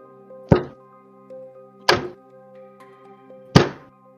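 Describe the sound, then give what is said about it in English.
Three slow, heavy pounding thuds of large fists slamming on the wooden door of a house, spaced about a second and a half apart, loud and booming and echoing through the house, over a quiet sustained musical hum. “The knock is much louder than what was just created as it echoes through the house, large fists slamming on the door.”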